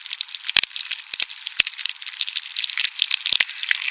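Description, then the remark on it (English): Bark beetles moving inside a tree, heard through a device pushed through the outer bark: a continuous dry crackling and rustling with scattered sharper clicks and pops, steady throughout, with no voices. “The first sounds I heard was just sort of a kind of stirring, crackling noise that turned out to be the beetles moving.”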